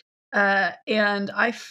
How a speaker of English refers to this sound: Like, what is that noise? It's Mr. Squeak being loud as usual. He's a pug. He's got a fucked up respiratory tract. Apologies for the snoring.